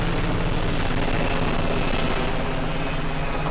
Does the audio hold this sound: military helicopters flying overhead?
yes